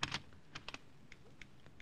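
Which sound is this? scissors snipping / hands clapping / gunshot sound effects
scissors snipping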